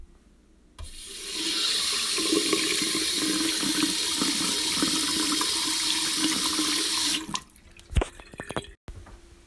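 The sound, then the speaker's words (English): A tap in a house turns on and water runs steadily in a strong hiss for several seconds, then shuts off, followed by a few clunks and handling noises. “Here is the water.”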